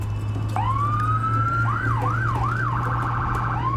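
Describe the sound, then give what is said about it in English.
A loud police car siren swells up into a long tone, then cycles through a few wailing sweeps before switching to a rapid yelp, all over a steady low engine hum. “The red and blue lights are reflecting off everything.”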